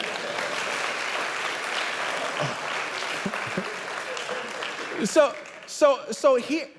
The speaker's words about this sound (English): Y'all give him a hand clap.